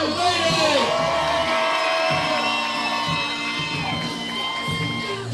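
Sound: crowd cheering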